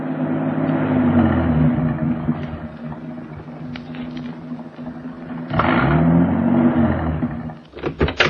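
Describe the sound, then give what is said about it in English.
A car engine drones steadily with a low, strained hum, swelling louder near the middle and end as it labors climbing up to the Hollywood Hills as it gets dark, with no voices. “It was getting dark now, and the car was climbing.”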